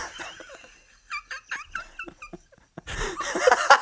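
A cat meows in a quick run of short, high, wavering cries, followed by a louder burst of breathy, laughter-like noise.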